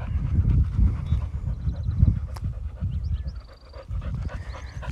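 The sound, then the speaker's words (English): A dog pants heavily right up close, quick rhythmic breaths running continuously for several seconds, loud and breathy, with no one talking. “Hold on, my dog's right here.”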